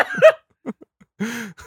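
A short run of coughs: a rough burst, a couple of small hacks, then a longer, strained, throaty cough with no talking.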